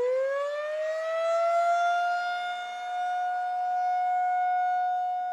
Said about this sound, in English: And I want to stress that they're now called outdoor warning sirens. You hear these sirens and you're outdoors, that just means you need to go in and gather more information to determine if you need to get to your safe room or not.